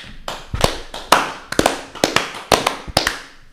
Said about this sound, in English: And this boy has to clap like something's wrong with him. He really got issues.